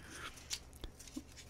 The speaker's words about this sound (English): My leaves aren't rustling very fast here. This Senior Adult Bible, I think it's specially made for people that are getting older. It's even harder to turn the pages.